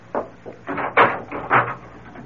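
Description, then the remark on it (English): A door opens and shuts as someone leaves, a short run of wooden clunks and rattling bumps over about two seconds, with no one speaking. “No, don't bother to come to the door. I'll let myself out.”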